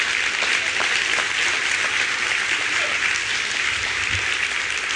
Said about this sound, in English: If you're going to clap, you need to clap better than that because our God is able.